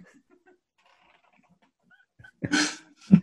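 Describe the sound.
After a long near-silent stretch, a voice does a loud imitation of a pig barking: a harsh, breathy burst followed by a short, deep grunting bark.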